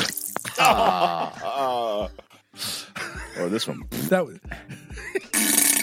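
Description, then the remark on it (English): A series of fart-like sound effects: wobbly, buzzy bursts with warbling pitch, played loud, with a man briefly speaking between them. “All right, sound like a fart sometimes.”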